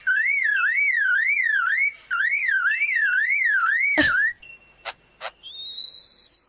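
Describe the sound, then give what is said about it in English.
A voice mimics a car alarm: a loud, warbling whistle sweeping up and down in rapid cycles, then a sharp burst, a couple of short chirps, and a steady rising tone, all without any talking. “And that's a car alarm.”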